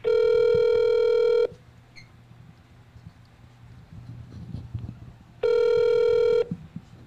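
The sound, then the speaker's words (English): A phone call to Wyatt Law Firm rings through with two long, steady electronic ring tones about four seconds apart, a low rumbling hum filling the gap between them. No one speaks. “Thank you for calling to Wyatt Law Firm.”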